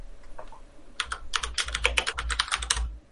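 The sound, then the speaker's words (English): Rapid, clattering keystrokes on a loud, old computer keyboard, a dense burst of sharp clicks lasting a couple of seconds after a few softer taps, prominent with no talking. “That old ass keyboard, dude.”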